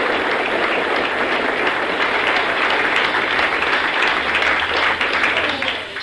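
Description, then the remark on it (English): Sustained applause from an audience at a religious meeting fills the whole stretch, a dense, steady wash of many hands clapping that holds loud throughout and eases slightly at the very end. “Now give them all a hearty clap.”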